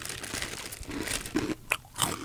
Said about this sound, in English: Take some cheesies here. Definitely fresh. I like the crunch.